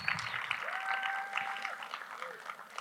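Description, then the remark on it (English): A church crowd applauds steadily for a few seconds as a woman is invited on stage with the worship team, a dense wash of many hands clapping at once, with a thin sustained tone briefly running underneath. “Let's give Nane a round of applause.”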